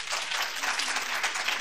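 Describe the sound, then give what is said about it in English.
An audience bursts into steady applause to show they have gum or mints in a woman's purse, a dense wash of many hands clapping at an even, moderately loud level throughout, with no voices standing out. “All right, would you applaud if there are gum or mints in that purse?”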